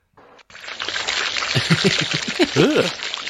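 Water pours and splashes over wheat crops in a steady, fairly loud gush for about three seconds after a short burst, with some warbling, voice-like tones rising through the later part of the rush.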